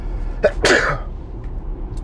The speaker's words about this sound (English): As you can see, this podcast is live. We do not bleep out sneezes.